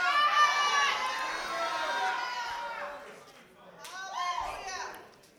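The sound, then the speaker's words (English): An audience shouts and cheers together during a sermon, a loud swell of overlapping raised voices that eases briefly, then rises again in a second burst before fading. “Yeah, that's a shouting time.”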